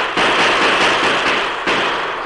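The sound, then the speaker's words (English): A loud, dense volley of gunshots fired by the Lone Ranger and Glenn from a rooftop at Indians, the rapid cracks overlapping into a continuous crackling barrage for about two seconds, with a fresh burst near the end and no voices. “As the Lone Ranger and Glenn poured lead down from the rooftop, the Indians broke and ran.”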